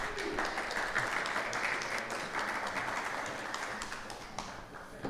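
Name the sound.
audience round of applause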